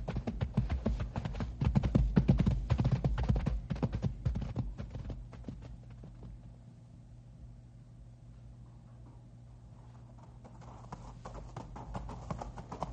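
Several horses' hooves clip-clop in a busy, irregular rhythm over a rocky trail with loose rock, loud at first, then thinning out to a quieter stretch before picking up again toward the end.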